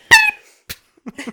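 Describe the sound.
A voice imitates a cricket with one loud, squeaky, high-pitched chirp, followed by a sharp click and a few soft murmured sounds.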